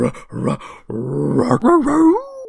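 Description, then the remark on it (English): A person imitates a dog's happy whine, a few short voiced bursts followed by a longer sliding, wavering whimper that rises and falls in pitch. “If it weren't for you, Officer of the High Guard, and your weird dog. Who's a good girl?”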